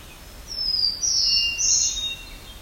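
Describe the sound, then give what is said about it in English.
Birdsong: a hermit thrush, a black-throated blue warbler and a black-throated green warbler farther off, heard as high, thin whistled and buzzy phrases in a short run of a couple of seconds over a quiet outdoor background. “So we got both hermit thrush and black-throated blue warbler and black-throated green warbler further off.”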